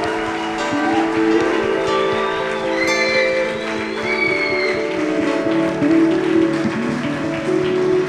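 An audience applauding steadily, a dense wash of many hands clapping at an even loudness, with sustained musical tones ringing beneath the clapping throughout.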